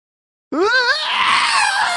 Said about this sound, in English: The Wilhelm scream is included. Yes.